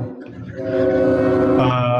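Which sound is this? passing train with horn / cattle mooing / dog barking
passing train with horn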